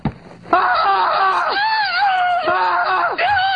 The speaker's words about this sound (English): They're screaming because he sees a man's dick. So this is definitely not for children.